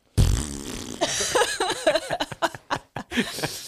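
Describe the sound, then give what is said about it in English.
A person vocally imitates a fart that went wrong, starting with a loud sputtering burst that breaks into a string of choppy, uneven raspberry-like pulses before trailing off. “Doing a fart that went wrong.”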